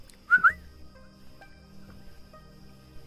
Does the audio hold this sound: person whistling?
yes